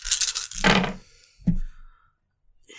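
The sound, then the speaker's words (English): Dice clatter and tumble across a hard surface, a burst of quick rattling hits followed by a couple of heavier knocks before they settle into silence, the roll coming to 7. “So it's going to be suicidal thought versus her dice. So she gets 7.”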